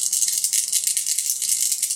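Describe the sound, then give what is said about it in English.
Four dice rattle continuously in a shaken cup or hand for a block roll, a bright, dense clatter of many small clicks with a steady pulsing rhythm, fairly loud and with no talking. “So he'll still get to go first, and I will set aside some dice for that. I'm going to block with 4 dice.”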